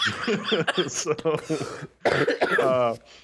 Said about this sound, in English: I broke my promise just then and I coughed